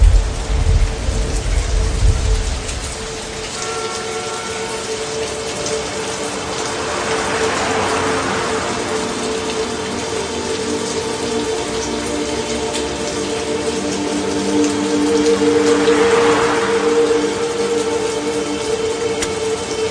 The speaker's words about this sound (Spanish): Esa luz de la noche, aspirando el olor a tierra mojada y la lluvia de fondo. Aún no les molesta la lluvia, yo siempre le encuentro ventajas.